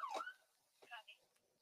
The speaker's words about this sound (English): activated her lights and siren to get the drivers to move.